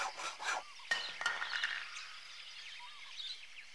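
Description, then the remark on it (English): A saw used to imitate a jungle bird: quick rasping strokes at first, then thin, squeaky chirps and warbling whistles that mimic bird calls, fairly soft and with no talking. “I call this one, …, because the sound of that bird is done with a saw.”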